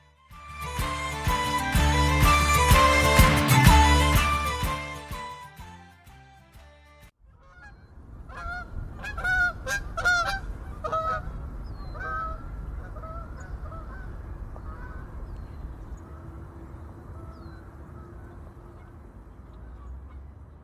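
Music plays for several seconds, then stops, and a flock of geese honks repeatedly in rough, nasal bursts over a steady rushing background, the calls gradually thinning and growing fainter.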